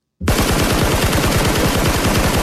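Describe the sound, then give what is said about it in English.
Rapid automatic gunfire bursts in after a brief silence, a loud, continuous rattle of rounds at a steady fast rhythm with no one speaking. “Put the guns from last week.”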